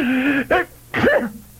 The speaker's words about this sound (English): What art thou sneezing about? Bone is rather dusty, sir.